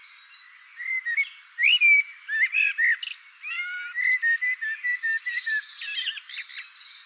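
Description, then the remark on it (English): A blackbird sings a varied run of fluting whistles and chirpy phrases, repeated in quick bursts with brief pauses, fairly loud with no voices. “Blackbird has spoken”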